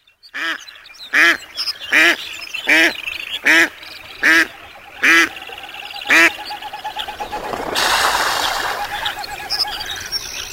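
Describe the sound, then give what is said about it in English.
A series of about eight loud, evenly spaced duck quacks rings out, followed by a broad rushing splash of water as ducks come down onto a pond, landing with raised wings and hydroplaning on their webbed feet. “While ducks, landing on a pond, use a combination of raised wings and a bit of hydroplaning, like water skiing on their wide, webbed feet.”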